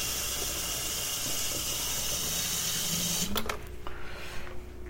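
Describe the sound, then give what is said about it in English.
Tap water runs steadily into a tea kettle, a faint rising tone as it fills, then the flow shuts off with a couple of clicks and a quieter hum continues. “I'm gonna fill up the tea kettle here.”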